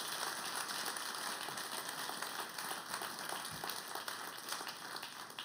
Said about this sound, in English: Hey, can we just applaud for that? Okay.